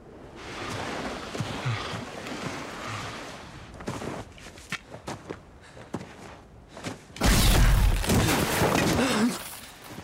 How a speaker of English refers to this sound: Those are the sounds of skeletons bursting up from out of the ground, attacking our heroes and our hearts with sheer terror and bone parts.